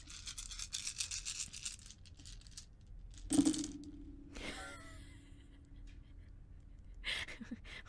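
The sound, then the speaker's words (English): A handful of many dice rattles and clatters onto a table, with a sharp impact followed by a lingering spinning ring, then a few scattered clicks as they settle. “Okay, my God, this is so many dice.”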